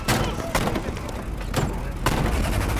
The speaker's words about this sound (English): When all of a sudden, shots tore through their real bedroom. The gunfire lasted a while.